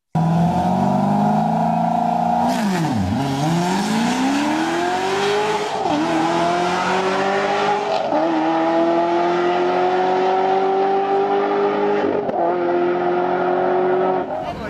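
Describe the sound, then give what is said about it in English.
A loud drag race car roars off the line on a nine-second quarter-mile run and accelerates hard, its pitch climbing steadily through several quick gear shifts over about twelve seconds before cutting off. “Yeah, that was the 9 second quarter mile one.”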